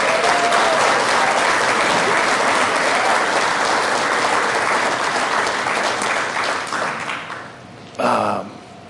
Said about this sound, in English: Hey, could you do something really quick? My favorite person in the whole world just had a birthday on Friday, April 5th. Could you give her a big hand clap, my wife?